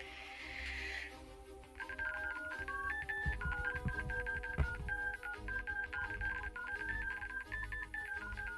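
A long run of touch-tone beeps as a long phone number is dialed, the tones stepping up and down in quick succession over a low background rumble, fairly loud.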